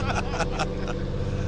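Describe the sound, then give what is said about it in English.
A loud, steady low rumble of big monster truck engines idling, with a noisy crowd murmuring over it and a few brief louder bursts early on. “Ladies and gentlemen, let's get your cars ready to rumble. We're doing the monster truck show right now.”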